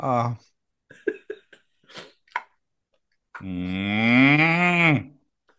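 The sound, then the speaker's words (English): A person's voice imitates a cow with one long, drawn-out moo that rises and falls, following brief bursts of quiet talk and mouth noises. “Yeah, moo to you too.”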